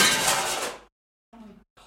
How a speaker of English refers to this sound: What happened? The frame just... Oh my god. What was oh that? Oh my god. The frame fell and just smashed on the ground. Oh my goodness. Yeah. Man, out of nowhere.